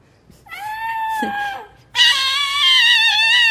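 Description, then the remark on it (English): A voice imitates a kitten's crying scream with two long, wavering, high-pitched wails; the second comes after a brief gap and is louder and shriller. “So then I got closer and it was crying, screaming when it made eye contact with me.”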